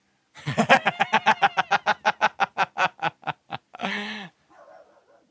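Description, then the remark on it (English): A rapid burst of about seventeen sharp, yappy dog barks in quick succession, fairly loud, ending with a longer rough bark and a faint trailing sound. “Hello, dog.”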